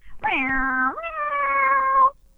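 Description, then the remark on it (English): A single voice imitates a speeding car with a sustained, buzzy engine-like drone that jumps to a higher pitch partway through, fairly loud, lasting about two seconds with no other talk. “Yeah, can my best car sound effect? Well, I do it all the time when I'm driving in the car with you and you're trying to go fast and impress me.”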